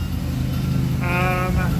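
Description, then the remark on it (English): A lawnmower engine drones steadily as the side lot is mowed, its low rumble constant throughout, with a brief higher-pitched whine rising over it partway through. “But we have a lawnmower coming and no trophy.”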